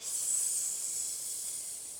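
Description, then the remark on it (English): A big snake in the woods gives a steady, sharp hiss, much like a steam radiator, holding at an even level for about two seconds before cutting off abruptly. It is fairly loud, with no voices. “Once, as she was sleeping in the woods, she heard a hissing noise like a steam radiator.”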